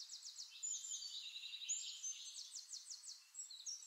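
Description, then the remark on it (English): Distant birds sing in quick, repeated high chirps and trills, a soft continuous chorus with no voices, faint and far off against a quiet background. “Birds singing in the distance, the breeze rustling the grass.”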